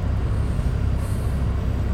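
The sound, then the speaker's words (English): A heavy truck rumbles steadily right next to the speaker, its air brakes letting out a faint hiss over the low, continuous engine drone. No one speaks. “No, it's not your brakes. It's the truck's brakes next to you.”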